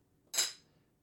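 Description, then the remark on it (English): A single bright clink of two glasses of fridge water touching in a toast, sharp at the start and ringing briefly with a high, shimmering tone before fading out, with no talking. “But cheers with our waters to start with.”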